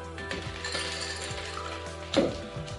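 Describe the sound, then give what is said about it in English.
Ice cubes drop into a glass to start an Azalea cocktail, making a few irregular clinks and rattles, with one louder clatter toward the end over a low steady background hum. No one speaks. “So first we're going to start with a little ice.”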